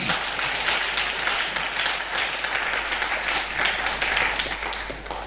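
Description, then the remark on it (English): A crowd breaks into sustained applause for Jesus, many hands clapping in a dense, steady wash of sound that holds at an even level for several seconds with no speech over it. “I thought we were going to clap to Jesus.”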